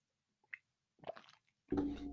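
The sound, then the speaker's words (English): Someone drinks water: a small click, then a few wet sips and gulps, followed by a louder, sustained breathy rush as the drink ends. No one speaks. “I suppose I could just like cut those out because I've been drinking so much water.”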